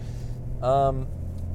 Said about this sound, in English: Oh, it's a rough road. Oh, I'm on the highway now.